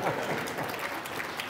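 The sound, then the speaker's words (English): An audience claps together after preaching in a steady, dense patter of applause that holds at an even level for the whole moment, with no voices breaking through. “Now, you should clap for that.”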